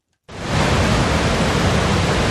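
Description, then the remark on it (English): A loud, steady roar of water cascading down the staircase spillway of Dartmouth Dam, spilling for the first time in 26 years, begins abruptly after a short silence and continues as a dense, unbroken rushing wash with no voices. “It's been 26 years since anyone heard the roar of water cascading down the Dartmouth Dam spillway.”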